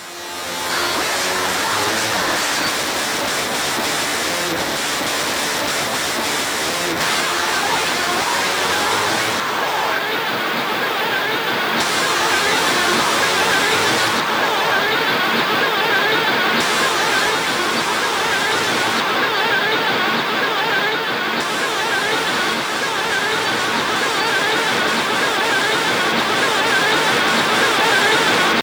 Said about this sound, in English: Yeah, the pink noise just completely eats the mix.